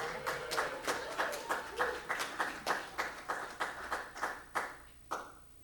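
Audience applause welcoming a speaker, with a steady, rhythmic run of sharp claps at a moderate level, the claps evenly spaced for several seconds before trailing off, and no talking.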